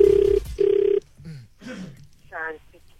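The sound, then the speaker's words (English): Two short, steady ringback tones sound through a company phone line on an outgoing call in a quick double-ring pattern, then stop as a faint voice answers and begins speaking. “Well, you know, I use the company phone, so it's fine.”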